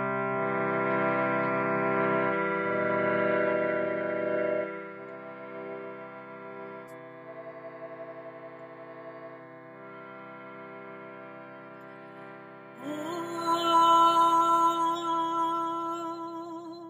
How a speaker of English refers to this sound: This is my harmonium.